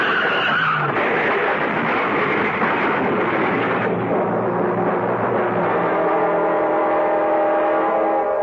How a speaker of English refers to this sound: On an icy road in midsummer, two cars slide into each other, something that usually happens only in midwinter.